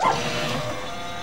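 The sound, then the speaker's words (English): An uncooperative printer reporting a paper jam gives a short electronic beep, followed by a steady mechanical whir that runs evenly for about a second, moderately loud, with no voices. “Even its villain is incredibly familiar, a beeping, uncooperative printer.”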